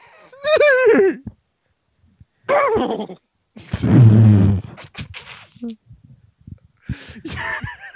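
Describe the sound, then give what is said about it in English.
A person imitates a horse whinny with short, quavering, high-pitched vocal bursts, followed by a louder breathy outburst and some quieter sounds. “You can fucking make a horse noise.”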